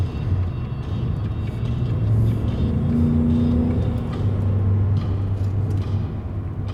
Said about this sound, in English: 7:54 a.m. I am in Washington County. This is Highway 75, going around this little left-handed turn. I'm following a construction semi-tractor trailer. Looks like he's hauling asphalt for some road project somewhere.